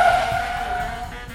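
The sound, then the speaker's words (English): Car tires squeal in one loud, sustained screech as the driver makes a handbrake slide through a turn, with a low engine rumble underneath and no voices. “I think I'm getting the hang of this freak slide thing.”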